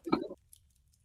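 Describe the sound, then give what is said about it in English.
A lighter flicks on with a brief, soft scratchy burst, followed by a couple of faint light ticks before quiet settles in. No one speaks. “and all you can hear is the gentle of a lighter as it kicks on, and you you see a flame dancing in Takari's hand.”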